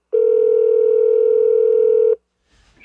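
A phone call rings out over a speakerphone: one steady, loud electronic ring tone lasting about two seconds, then silence and a faint rustle as it cuts off.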